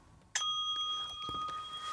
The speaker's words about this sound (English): Bells! Yeah, there's a bell. We got... Oh, so much technology! We got stuff. It's a bell app. A bell app.